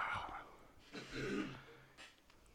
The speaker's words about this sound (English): Sorry. I thought you were like getting it ready for it. No, just had to clear my throat.